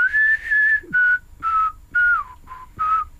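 A clear, close whistled tune in six short phrases with brief gaps between them, each note a steady, bright pitch with slight slides, carried alone with no talking.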